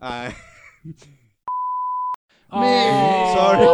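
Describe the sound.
A steady, loud electronic censor bleep of about two-thirds of a second cuts into speech over a swear word, with talking on either side of it.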